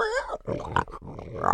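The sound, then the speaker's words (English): A pig in the yard grunts and snorts in a quick run of rough, low oinks, opening with a brief higher squeal-like note and ending in a louder, raspy grunt. “Oink, oink, oink. Hey, there is a pig in the yard.”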